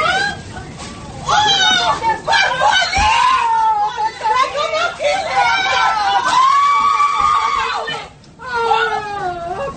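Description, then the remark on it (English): Several women yell and scream over each other on a bus as a group of teenagers attacks a 67-year-old man, a loud, chaotic, continuous jumble of raised voices with agitated crowd noise underneath. “Women yelling Monday as a group of teenagers attacked a 67-year-old man.”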